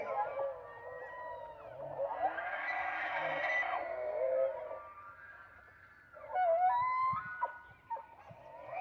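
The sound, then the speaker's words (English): Elk bulls bugle during the rut in a national park, two of them about to fight. Long, high, whistling calls glide and waver in pitch and overlap one another, ending in shorter grunting, squealing bursts. “The Otherworldly Sounds of an Elk Rut”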